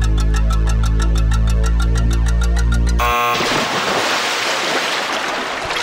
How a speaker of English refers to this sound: There we go. That's where the splash happens.